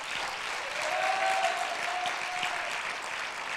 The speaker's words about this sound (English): Hallelujah. Could you clap right where you are, because you're a Pentecostal?